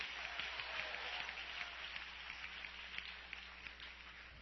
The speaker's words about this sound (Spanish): Si le va ese aplauso, dáselo bien fuerte esta noche.